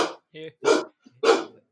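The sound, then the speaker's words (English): A female golden retriever barks three times in sharp, loud bursts, with a brief higher whine-like sound between the first two barks. “Is that dog racist?”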